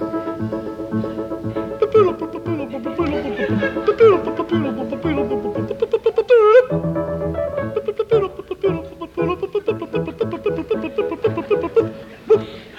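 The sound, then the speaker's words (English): A full orchestra in an opera house pit, led by a conductor, plays the opening of an opera overture, with steady, lively rhythmic playing and sustained melodic lines, loud and continuous throughout with no talking. “And this is the overture.”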